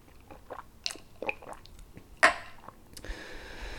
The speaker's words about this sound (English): Pause as I take a little sip of the bevy, would you?